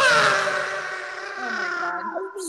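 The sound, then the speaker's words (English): A voice imitates a motorcycle on water, a sustained buzzing, moaning drone with rich overtones that wavers and slides in pitch, dipping briefly near the end, lasting a couple of seconds. “So it was basically like motorcycle sound on the water.”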